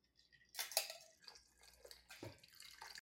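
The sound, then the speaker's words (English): A cocktail is poured into a glass over frozen fruit used as ice cubes, splashing with small clinks and crackles from the frozen chunks; a wet trickling sound with bursts of clatter and no talking. “Mine are frozen, so they're like ice cubes. Oh, smart. Yeah, it's a really good tip. You should get to the glass, right?”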